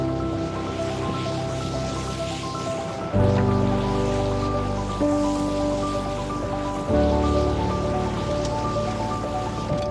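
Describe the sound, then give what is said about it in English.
A boat scrapes and bumps along over rocks in a river current amid steady rushing water and a low droning hum, with two sudden heavy jolts that leave the sound louder afterward. No one speaks. “you're in the river and you've got a current, you've got rocks, uh-huh.”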